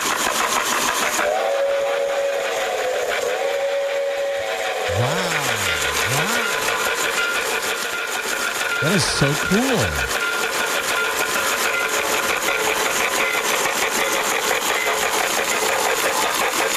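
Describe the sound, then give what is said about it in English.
A small model 484 steam locomotive runs in a showcase, suspended over the track, with a steady mechanical whir and chuffing steam sound, while an electronic whistle gives a couple of rising and falling toots; a voice briefly comments over it. “It has electronic whistle, the sound of steam, puffing smoke, transformer.”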